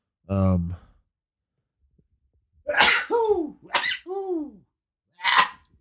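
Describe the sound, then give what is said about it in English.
A person sneezes loudly, a short voiced intake first, then a quick run of two or three forceful sneezes with voiced trailing tails, and one more sharp sneeze a moment later. “I was just sneeze everyone. It wasn't a cough.”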